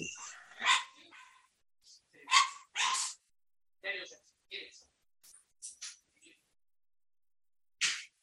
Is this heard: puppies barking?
yes